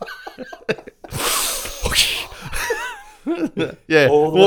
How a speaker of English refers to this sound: As you do your Wim Hof breathing in front of that?